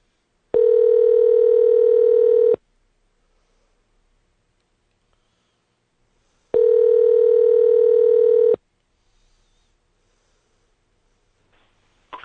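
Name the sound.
telephone ringing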